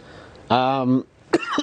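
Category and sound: human body sound, coughing and throat clearing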